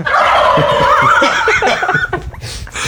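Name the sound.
turkeys gobbling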